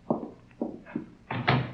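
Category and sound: household object, door being closed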